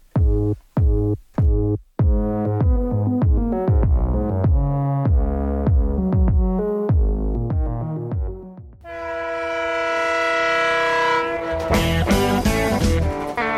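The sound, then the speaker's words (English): A steam train chugs in rhythmic bursts that pick up pace, then a loud, sustained horn blares over the rumble near the end. No voices. “Yes, choo, choo, choo.”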